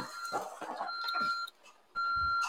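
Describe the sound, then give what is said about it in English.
An electronic alarm in a garage, about to be turned off, beeps in steady, high-pitched tones: two long beeps separated by a brief pause. It is fairly loud, with some background rustling and muffled activity underneath. “You're here in the garage door, open and closed behind me, and I'm about to have to turn off an alarm.”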